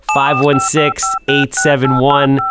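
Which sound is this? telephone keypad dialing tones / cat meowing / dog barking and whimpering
telephone keypad dialing tones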